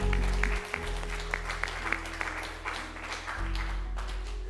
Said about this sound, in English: That's how it sounds when people are connected in a service and clapping together.